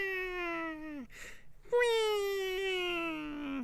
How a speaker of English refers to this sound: Oh my gosh, that sounds like one of those old like hand-operated sirens. Is that? I mean, it's either that or a flawless impression of one. Oh my God, you guys, that's the … siren.